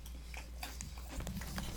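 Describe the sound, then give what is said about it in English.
Crisp crunching of goldfish crackers being chewed, a quick series of sharp, irregular crackles over a low steady background hum, with no talking. “These goldfish crackers are so good.”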